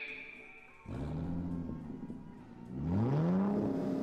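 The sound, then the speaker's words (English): A fast car engine roars in and revs hard on the Tamiami Trail, its pitch climbing twice as it speeds along, loud and steady with no voices. “And now the scene shifts to the Tamiami Trail, where a bullet car flashes toward adventure.”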